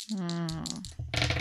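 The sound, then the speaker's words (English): Two dice rattle and clatter across a hard surface in a short burst near the end, following a sustained tonal hum at the start. “Okay, and so you need to roll 2 dice, and you need to get them at 4 or lower.”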